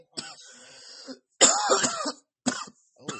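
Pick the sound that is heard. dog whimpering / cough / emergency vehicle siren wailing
cough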